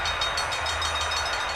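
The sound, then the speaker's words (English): A short train sound effect played as a stream alert for reaching level one of a hype train: a steady, fairly loud rumbling roar with a faint rhythmic clatter running through it, heard on its own without any voices. “Oh, look, we hit our level one hype train, you guys.”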